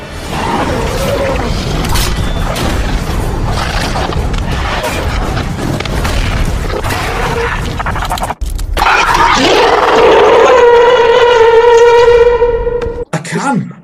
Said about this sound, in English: I can. It's the crab alarm. Here we go.